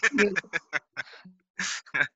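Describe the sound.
A voice gives a run of quick, nasal, honking bursts, imitating a cartoon bird's squeaky "beep beep" call with brief gaps between the yelps.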